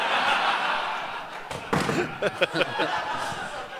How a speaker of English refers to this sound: Oh, shit. You normally say something clever and then do that. I apologize to the house. That was the worst mic drop ever. That was the worst. I'm very, very sorry.